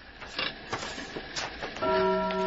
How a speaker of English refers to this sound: What the hell is... The grandfather clock. I thought it was broken. See, there you are. Good omens. The old bugger wants us on the job.